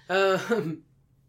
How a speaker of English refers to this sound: Sorry for the coughing again. Excuse me, guys. Stop coughing. I know how embarrassing.